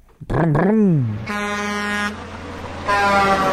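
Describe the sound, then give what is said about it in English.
A loud, brassy 18-wheeler truck air horn blasts twice, with a bending, wavering tone before a long steady honk, a short pause, then a second blast that cuts off abruptly. “So 18 wheelers. The only truck I have, dude.”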